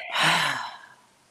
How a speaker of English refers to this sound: And then moving the attention now from taking the breath into the nose and then pushing it out of the mouth. So breathing into the nose and pushing out of the mouth. Into the nose and breathing out of the mouth.